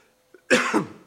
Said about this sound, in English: You'll have to excuse me because I've got a bit of a cough, so hopefully I'll get through this without coughing too much.